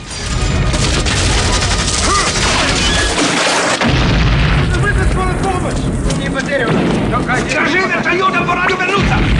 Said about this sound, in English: Rambo shoots three guards, then passes Hamid carefully down to Musa, who's in the dank sewers.